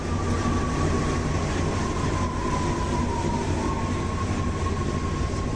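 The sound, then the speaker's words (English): A Metro Red Line subway train in Washington, DC runs steadily on its rails toward the city centre, a dense continuous rumble with a thin high whine of the wheels drifting across, loud throughout with no voices. “I'm on the Metro Red Line headed to the heart of DC.”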